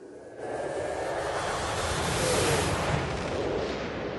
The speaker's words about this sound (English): Thunder rumbles and rain pounds on a window as a female child wearing the same familiar necklace we've seen on Dodge and Soji calls for her father in a hallway in the night.